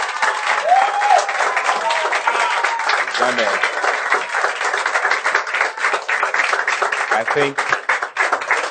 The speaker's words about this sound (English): I think we should clap for our pastor.